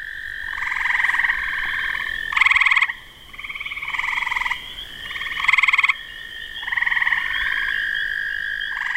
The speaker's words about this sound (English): Wow. Yeah, so this would be a typical, probably spring, late spring, early summer evening, if you're out at various observation sites. So when I listen to that, I can actually hear 3 different frogs and toads calling to us.